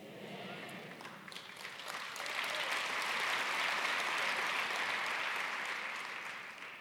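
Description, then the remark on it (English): A church audience applauds steadily for several seconds, the dense clapping swelling a little in the middle before easing slightly toward the end, with no speech over it. “And you members of the church, we applaud you as well being part of this.”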